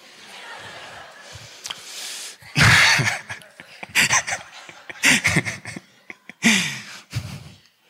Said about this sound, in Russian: А что ты чихаешь, ходишь?